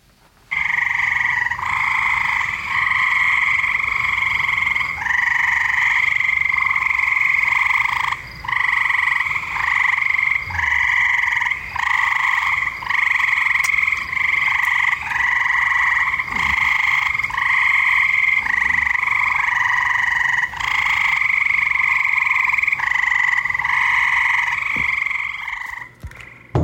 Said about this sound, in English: But we're going to start off with some frog noises. All right. Here we go. Have a listen.